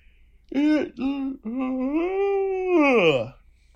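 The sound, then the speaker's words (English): A loud, voiced yawn: two short throaty bursts, then a long drawn-out moaning tone that holds steady, swells, and slides downward in pitch before trailing off. “Excuse me, that was just a yawn.”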